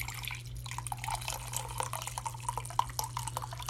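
Brewed tea from a small, concentrated brew is poured out during a tea tasting in a thin, trickling stream broken by quick drips and splashes, fairly soft, with a steady low hum underneath and no one talking.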